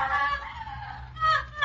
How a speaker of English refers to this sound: That is the scream of a Yugoslav woman. She's not being molested. Her pain is mental. She's just remembered something that happened on Bloody Sunday in Belgrade in Yugoslavia.